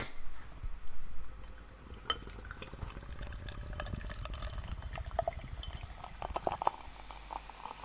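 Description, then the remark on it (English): Beer glugs steadily into a craft beer glass in a big pour, with a broad rushing pour and fizzy crackling of carbonation bubbles building over several seconds into a head, fairly loud, with no talking. “Doing a big pour on this bad boy. Big boy pour.”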